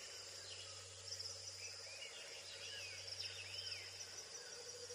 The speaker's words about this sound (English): It's a quiet forest. It is a quiet forest. Too quiet. Maybe. Mm-hmm. There's still birds, huh? There's some little bug chitters.